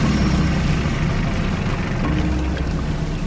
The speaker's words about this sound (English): Starting up the engine to my boat, I started to drive it towards the middle of the lake.